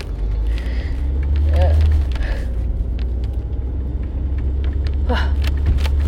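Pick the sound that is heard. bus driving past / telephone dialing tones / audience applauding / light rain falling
bus driving past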